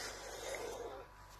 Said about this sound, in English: I've just got to apologise for coughing. really am struggling at the moment, as you can hear from my voice.